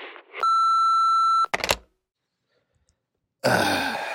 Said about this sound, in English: leave a message after the beep, bye. Beep!